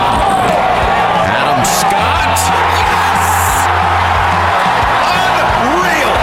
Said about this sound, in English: Crowd cheers.